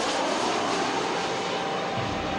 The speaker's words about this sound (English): He bought a ticket and got on board a jet bound for Los Angeles.